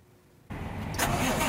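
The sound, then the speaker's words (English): A large Ryder truck engine cranks and catches abruptly after a brief quiet moment, then settles into a loud, rumbling idle that swells slightly, with no voices. “drives his Ryder truck up to 100 miles a day on Florida roads, always on the lookout for signs of distress.”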